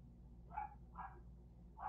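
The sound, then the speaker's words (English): Three short dog barks ring out at a steady pace, moderately loud, from a bunch of dogs beyond a yard fence, over a low constant background hum with no one speaking. “So over the fence, so there's a yard, and then there's a fence, and then there's like a shed, and there's a bunch of dogs that like to bark if I'm in a deep conversation with somebody, or I'm doing something like this.”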